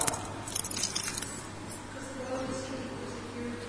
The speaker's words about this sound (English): That cluster of keys there, and you've got one in your pocket or your handbag or your coat or something similar, haven't you?